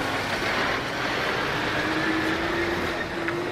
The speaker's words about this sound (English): So there's a lot of trucks driving past me.